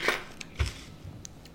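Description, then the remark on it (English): A coin or a couple of coins drop into a pushka, a charity box: a few small metallic clinks and a soft low thud, fairly quiet, with no one talking. “If you don't have a pushka, just grab a cup of some sort, and let's put a couple of coins or a coin into the pushka.”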